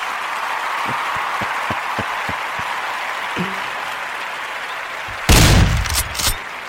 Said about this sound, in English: But anyways, round of applause.